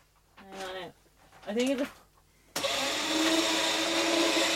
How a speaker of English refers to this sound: Give it a little nudge. Turn it on there again, because okay. The shredder, it's just a paper shredder from... It's sounding better now. Do a test shred there, will you? Just we'll quickly. Do a test shred, just to make sure.